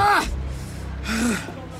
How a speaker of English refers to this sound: His breathing is ragged.